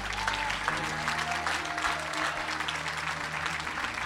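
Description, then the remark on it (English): A church audience claps steadily and loudly after a prayer, giving the Lord a big clap and a shout; a dense wash of hand claps with scattered voices shouting and cheering through it, sustained for several seconds over a low organ-like hum. “Can we give the Lord one more big clap and a shout?”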